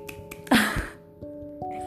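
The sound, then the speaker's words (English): A sharp, bright snap from a one-handed clap cracks out once, followed by a softer second tap, over a faint steady background hum with no talking. “They say you can't clap with one hand, but surely I can.”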